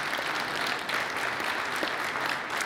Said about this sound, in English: Yeah, you can clap.